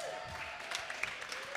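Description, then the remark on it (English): Light, steady applause at a live show at Austin Eastsiders crackles for a second and a half, a soft continuous patter of clapping hands with a faint murmur of voices underneath. “Give it up, y'all.”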